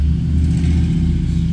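A large truck rumbles past, its heavy engine producing a loud, steady low-pitched drone that fills the whole moment, with no voices.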